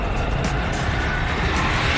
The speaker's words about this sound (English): First of all, is it even a car? Aye. This is a car. Trust me, it's a car with a motorbike engine.